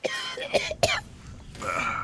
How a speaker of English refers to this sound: All this talk of mouth plates and noses is making me cough, man.